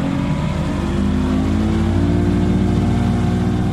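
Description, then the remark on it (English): A boat's engine revs loudly and steadily, its deep droning hum building continuously as the vessel gets underway for a look at the marshes of Louisiana, south of Alabama's Mobile Bay. No voices are heard. “Just to the south, I got on a boat for a look at the marshes of Louisiana. Hold on.”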